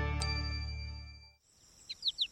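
A sustained musical chord fades out, then a songbird chirps four quick, bright, rising notes in a steady rhythm, clear.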